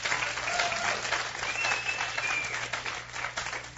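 A crowd applauds the band steadily, dense overlapping claps filling the whole stretch at a fairly even loudness, with a faint whistle rising briefly above the clapping.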